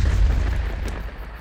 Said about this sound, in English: Thor leapt again, higher this time. The impact of Mjolnir on Skrymir's head could be heard halfway around the world.